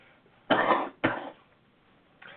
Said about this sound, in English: Sorry about my coughing.